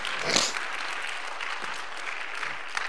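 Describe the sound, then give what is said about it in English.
A crowd applauds, giving the Lord a hand clap of thanksgiving, in a dense, steady wash of many hands clapping, swelling briefly near the start and then holding an even, moderately loud level without a distinct rhythm. “Someone give the Lord a hand clap of thanksgiving.”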